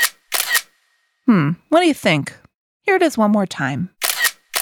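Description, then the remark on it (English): Crisp, bright camera shutter clicks, two quick snaps at the start and two more at the end, with a person speaking briefly in between. “The sound you heard was a camera.”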